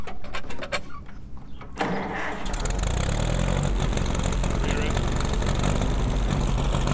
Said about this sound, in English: These are like old like tractors from the 40s. Cool. We're lucky enough to be able to like rip and roar on them.